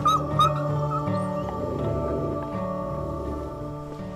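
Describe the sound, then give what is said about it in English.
Several wolves at Dublin Zoo howl together at night in a chorus of long, overlapping tones that hold steady and then slide to new pitches, with a few sharp higher yips near the start and no talking. “They live in family groups of up to 12 animals, howling together, and it establishes cohesion.”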